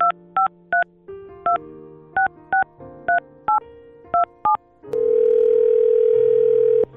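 A telephone being dialed to call the speaker's mother in Bowie, Texas: about ten short, bright keypad tone beeps in quick uneven bursts over a low hum, then a loud, steady tone that holds for the last two seconds.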